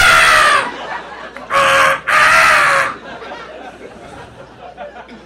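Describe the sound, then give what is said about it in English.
A voice imitates crow caws with three loud, harsh, raspy calls: a short one, a brief pause, then two back to back, the last drawn out longest, before fading to low background noise. “The annoying crows.”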